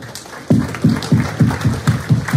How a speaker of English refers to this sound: Yeah, go for it, round of applause, why not?